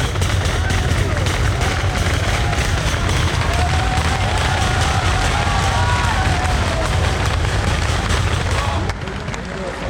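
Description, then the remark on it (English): A loud, dense din of a roadside crowd at a cycling race cheering and rapidly banging on the barriers, sustained, with voices shouting throughout before easing slightly near the end. “Yeah, it's quite deafening here with everyone banging on the barriers.”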